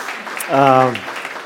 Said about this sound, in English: But I did want to just welcome them back. And so if we can give them a round of applause.